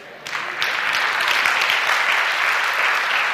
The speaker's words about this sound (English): I'm listening for the applause.